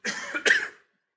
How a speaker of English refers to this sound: Excuse me while I cough.